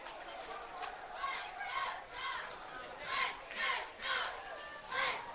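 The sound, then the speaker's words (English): A large stadium crowd chants "let's go" in a steady, repeating rhythm near the end of a game, the massed voices swelling in regular loud bursts that echo across a wide open space. “Let's go, Dog Chance. Start from the crowd.”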